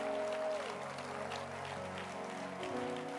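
A crowd claps steadily, a dense, even wash of applause that holds for the whole stretch, with sustained musical tones humming underneath and no one speaking.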